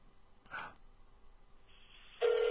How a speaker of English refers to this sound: It's ringing.